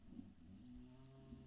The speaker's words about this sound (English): But Daisy is snoring like a damn machine. Jesus, listen to her.